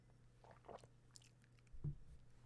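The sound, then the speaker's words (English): A quiet sip from a drink: a few soft, wet mouth noises and faint slurps over a low steady hum, ending with a brief muffled thud. “And sip.”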